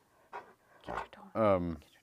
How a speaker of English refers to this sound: Our dog is growling again.